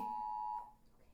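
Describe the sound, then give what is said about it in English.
A phone's Amber Alert notification tone: one loud, steady electronic beep with a bright buzzy edge that holds for about half a second, then cuts off and fades into quiet. “Those are Amber Alerts.”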